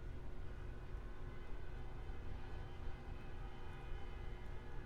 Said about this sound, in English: A din of screaming and car horns fills the streets of Astoria, Queens.